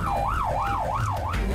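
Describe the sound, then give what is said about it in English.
A police car siren wails in a fast, steady yelp, its pitch sweeping rapidly up and down, loud over a low rumble of engine and road noise, as police turn it on for a motorist. “The cops have turned on the sirens for your motorist.”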